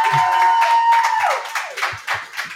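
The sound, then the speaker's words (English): A crowd inside Pizza Man Pub breaks into a round of applause for the New York State champion Baldwinsville Bees girls bowling team: dense steady clapping with a few scattered cheers and whistles mixed in, loud, tapering into individual claps toward the end. “Can we give them a round of applause, please?”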